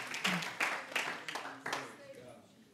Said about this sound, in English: One more time, would you clap your hands unto the Lord as you're seated this evening?